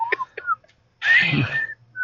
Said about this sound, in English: Hard to whistle right now.